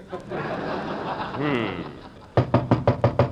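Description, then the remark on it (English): A murmur of voices and light laughter gives way to six sharp, evenly spaced, fairly loud knocks on a door, rapping in a quick steady rhythm. “Remember the first time I knocked at your door 3 years ago?”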